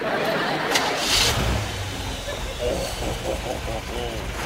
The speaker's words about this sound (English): You hear that? That's a big block Chevy 454. Two four-barrel carburetors nestled on aluminum high-rise manifold headers and dual exhaust.